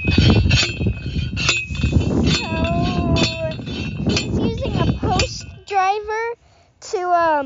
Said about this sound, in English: Push down the posts into the ground to put the fences around the trees.